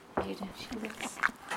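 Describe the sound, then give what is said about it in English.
Wet, smacking licks and rubbing as a pony licks a microphone, a rapid cluster of soft, noisy bursts with one sharper click near the end, fairly quiet overall. “That's one of the ponies licking my microphone.”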